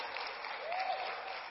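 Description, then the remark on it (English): A crowd of moms and dads claps steadily, a dense wash of many hands applauding at an even, moderate loudness, with a brief faint whistle-like tone rising partway through. “That's a good time for all the moms to clap and dads too.”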